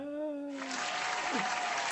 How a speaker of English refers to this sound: Brilliant. And the crowd goes wild.